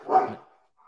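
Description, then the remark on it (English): A single short dog bark rings out, fairly loud, followed by a faint trailing sound and then quiet. No one speaks. “Dogs are still hype for Darrington.”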